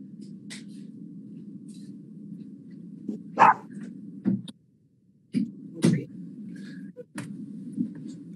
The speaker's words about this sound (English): Dog!